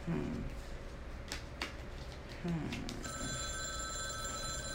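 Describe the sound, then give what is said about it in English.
A telephone starts ringing partway through with a steady, bright electronic trill that continues to the end, following a stretch of faint background murmur and low voice sounds. “I hope y'all can't hear that phone ringing.”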